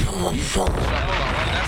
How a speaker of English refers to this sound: That's that hot 9-7 explosion. Do you have more of a Power Ranger explosion? That's the hot 9-7.